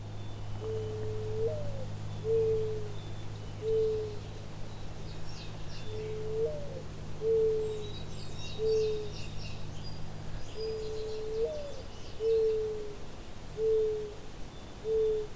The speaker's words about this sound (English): The mourning dove is a common and also very quiet bird. Its eponymous, mournful tones can be heard in most of North America in nearly any habitat where birds are found. Their sounds are often mistaken for distant owl hoots,